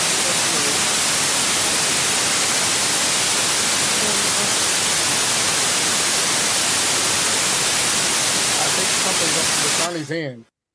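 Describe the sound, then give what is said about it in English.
A loud, steady wash of harsh static hiss fills nearly ten seconds, then cuts off abruptly as a brief voice-like sound and quiet tones flicker at the very end. “It was like some extreme static, like loud static.”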